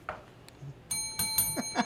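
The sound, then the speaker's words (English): A small bright bell, rung as an approval signal, rings out clearly, its sustained metallic tone layered with a few quick strikes that make it shimmer and ring on briefly. “Sometimes it's a shade bell. Sometimes it's an approval bell. That's an approval bell.”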